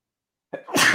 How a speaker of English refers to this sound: Bless you.